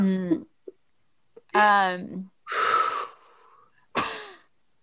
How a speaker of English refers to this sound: Doing some deep breathing here.